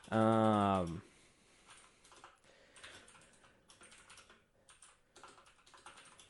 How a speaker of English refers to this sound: Sorry, my keyboard is so loud. I apologize.